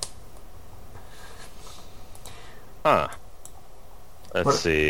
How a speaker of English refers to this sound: What are you guys typing? You guys keep fucking typing shit. Stop talking and typing and talk to me.